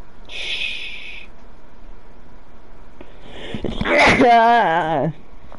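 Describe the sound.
A single loud sneeze, with a sharp burst of breath that trails into a voiced, wavering tail, preceded by a brief hiss of air earlier on.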